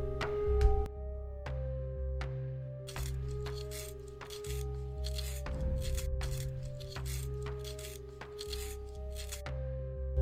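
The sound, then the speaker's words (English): A pencil being sharpened, a series of short dry scraping and clicking strokes at an irregular pace over a steady low background hum, with no voices. “Are you gonna do anything but sharpen that pencil?”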